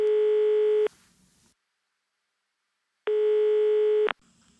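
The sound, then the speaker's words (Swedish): A telephone ringback tone sounds twice while calling one's mother, each steady beep lasting about a second with a pause of roughly two seconds between them, clear as if heard through the handset. “Alltså, när jag brukar bli lite så osäker och förvirrad och kanske bara behöver få lite stöd eller någon att prata med, då ringer jag min mamma. Och nu ska jag göra det.”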